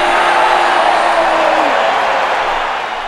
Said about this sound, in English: Is that a crowd I can hear? Definitely. I know football fans when I hear them. This pitch is of a women's team playing. Goal!